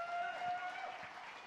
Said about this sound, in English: So if we could give those new prayers another round of applause, that'd be awesome.